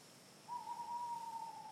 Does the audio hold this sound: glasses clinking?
no